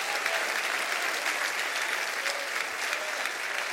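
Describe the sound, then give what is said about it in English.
A church audience claps steadily for several seconds, a dense, even patter of many hands with no pause, loud and continuous throughout, with a few faint voices mixed in. “Anybody want to clap your hands and say, I'm glad I got included?”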